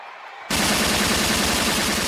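After a half-second of quiet hiss, loud rapid gunfire erupts abruptly and keeps going as a dense, continuous burst of fast, evenly spaced shots until the end.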